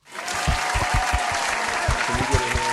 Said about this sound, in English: Can we get a hand clap?